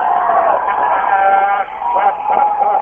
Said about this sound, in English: People in suits are even standing and clapping. They're tipping it over. They're tipping over one of the police cars. And they're cheering. Listen to the crowd.